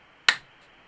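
A single crisp finger snap, a sharp bright crack that fades quickly, heard on its own against near silence with no voices.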